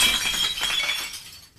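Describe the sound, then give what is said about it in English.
A burst of breaking glass shatters sharply, bright tinkling shards scattering and fading over under two seconds, with no voices present. “It shatters our long-held, oftentimes... you like that?”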